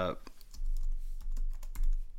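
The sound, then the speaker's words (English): Rapid computer keyboard typing, a quick irregular stream of sharp clicks over a low steady hum, after a brief burst of voice at the very start. “I'm typing.”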